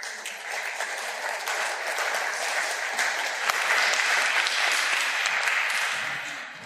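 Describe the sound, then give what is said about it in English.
A crowd applauds as Jack, a dog, comes up on stage, a dense, steady wash of many hands clapping that swells slightly toward the middle and continues for several seconds before easing off. “So Jack, if you could come on up, please give him a round of applause, folks.”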